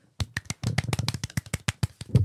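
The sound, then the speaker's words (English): A brief smattering of applause from a small group, sharp overlapping claps in an uneven patter lasting about two seconds, with no talking. “Oh, everybody, round of applause.”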